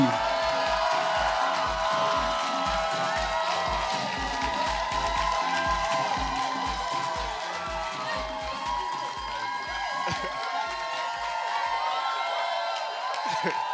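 An audience claps and cheers together, a steady roar of applause with whoops and shouts over a thumping rhythmic beat, loud and sustained throughout.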